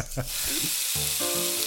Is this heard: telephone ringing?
no